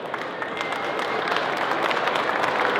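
A crowd applauds steadily to welcome a speaker, a dense wash of many hands clapping at once with individual claps poking through, holding a fairly even loudness and rising slightly throughout.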